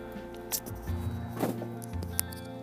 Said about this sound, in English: Sorry, my stepdad just opened the door behind me. The squeaking you heard was a door opening.